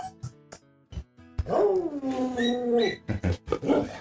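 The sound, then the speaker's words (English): Dogs growling at a kennel: a long, drawn-out rumbling growl fills the middle, surrounded by short, sharp bursts of noise, with no one speaking. “This is the kennel. Terrible kennel.”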